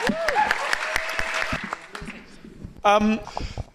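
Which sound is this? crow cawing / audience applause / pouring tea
audience applause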